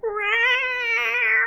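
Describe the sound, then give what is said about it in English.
A voice imitates weeping with one drawn-out, wavering whine that sounds like a mewling cat. It is steady, lasts about a second and a half, and nothing else is heard. “I was going to sit here and weep.”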